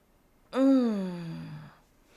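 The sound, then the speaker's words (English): A single drawn-out voiced yawn during a stretch, sliding downward in pitch over about a second before trailing off into quiet. “Let's start right off with a yawn stretch.”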